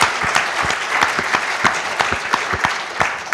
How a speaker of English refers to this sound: But before we do that, perhaps we can have a round of applause for all three of them,